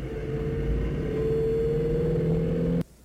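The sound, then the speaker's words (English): A steady, loud car engine drone with sustained harmonic tones holds for nearly three seconds, then cuts off abruptly into quiet. No voices are heard. “Like, listen to the cars, man.”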